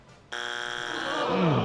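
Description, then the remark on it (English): A game show wrong-answer strike buzzer blares abruptly, a loud, harsh, steady buzz lasting about a second, then gives way to a wavering, voice-like sound as it ends. “First strike of the night. That buzzer does still work.”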